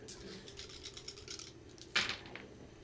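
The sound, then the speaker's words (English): A quick run of light plastic clicks and rattles, like many dice tumbling across a table, ending in a sharper clack near the end, fairly quiet over a low background hum. “a lot of dice.”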